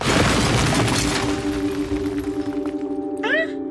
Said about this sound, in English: As you're walking away, there is an explosion in the ceiling.